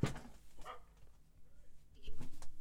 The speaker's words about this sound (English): So even though we had to wait all those years and go through a pandemic and the dog outside is barking, I'll kill you, Freddy, it was worth it. Can you hear that? I wonder if the mic picks that up.